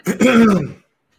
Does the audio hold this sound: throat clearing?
yes